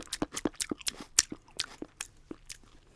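Wet, crunchy chewing with a quick, irregular rhythm of bites and squelches, about a dozen sharp crackly bursts over a few seconds with no talking.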